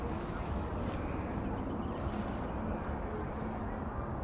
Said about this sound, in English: They trying to light shit outside. It's windy as fuck.